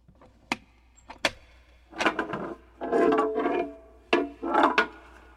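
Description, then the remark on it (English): A door opens with a couple of sharp latch clicks followed by several creaking, scraping bursts of wood movement, moderately loud, with no one talking. “Shouldn't we close the door?”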